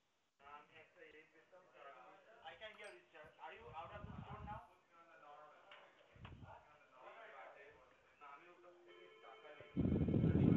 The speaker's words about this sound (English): Breathing into the phone. What is going on over there? You out of breath, sir?